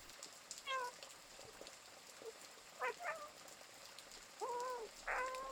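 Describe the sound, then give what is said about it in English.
A cat meows four times in short, scattered calls, the last two coming close together, over a faint steady background hiss with no one speaking. “As you draw closer, you see a sleepy cat curled up, catching a nap, completely comfortable and carefree.”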